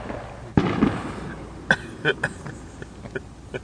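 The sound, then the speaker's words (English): A wood fire roaring in a stove packed full of wood crackles with sharp, irregular pops over a steady low hiss, opening with a louder burst and then scattered snaps that grow fainter. “This thing's roaring. This thing's... It's hissing more than crackling. You can't fit any more wood in that thing.”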